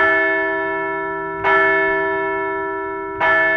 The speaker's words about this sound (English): They followed it up with another dub on Sunday, so we'll ring the bell for a second straight series win.